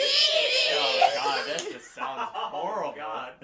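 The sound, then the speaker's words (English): Several voices let out a loud, shrill screech together, imitating the scream of the cartoon character Muscle Man, for about a second and a half, then break into breathy laughter and chatter. “Everyone at the same time, do the Muscle Man screech.”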